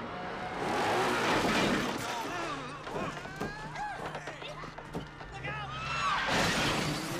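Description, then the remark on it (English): A chaotic, loud pileup of cars crashing on a bridge, with watermelons falling: roaring engines, crunching metal and shattering glass pile up continuously for several seconds, with shouting voices mixed into the din. “Now, in the opening scene when they're the bridge segment, yeah, they have all the cars, like, crashing and stuff, yeah, like that.”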